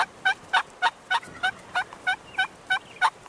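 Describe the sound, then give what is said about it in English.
A wild turkey hen yelps in reply to a gobbling tom during the spring mating season, a steady series of about eleven clear, evenly spaced, distinct notes, with no voices or other sounds around. “If he's lucky, a hen might yelp in reply.”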